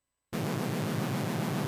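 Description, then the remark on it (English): After a moment of silence, a synthesizer patch drenched in heavy reverb bursts in, a dense, hissing wash with a steady pulsing throb underneath, loud and sustained throughout. “There's the patch with a fuck ton of reverb on it, just for fun. Synth with reverb”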